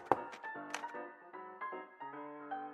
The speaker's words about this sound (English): placed a smile on her face before placing the tray down and knocking.